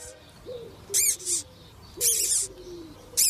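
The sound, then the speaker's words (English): A Taiwanese squeaking silk moth caterpillar, being touched by a human, gives short bursts of sharp, raspy, high-pitched squeaks, four clusters in a few seconds, with softer low cooing tones sliding between them. No one talks. “A guy, again, a Taiwanese squeaking silk moth caterpillar is being touched by a human.”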